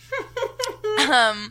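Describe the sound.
A few short voiced syllables, then a longer strained, throaty vocal sound as someone tries to hold back a burp mid-speech. Moderately loud, lasting about half a second.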